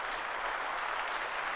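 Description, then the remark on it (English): A crowd applauds the maker of the hornsandwings.com website, a dense wash of many hands clapping at an even, sustained loudness with no individual claps standing out and no one speaking. “Big round of applause to whoever made that, who shall not be named.”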